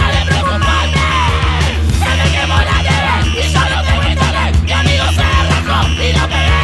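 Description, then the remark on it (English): Loud, dense synth punk with a steady pounding beat and a thick wall of five kids yelling together over buzzing synths, continuous for the whole stretch. “I didn't realize that it was like many kids yelling, but that makes sense now.”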